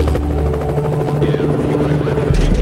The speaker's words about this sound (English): And then all of a sudden, out of nowhere, Jack Bauer's helicopters.